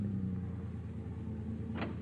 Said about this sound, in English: Finally, you bring the car to a stop in front of Tommy's boarding house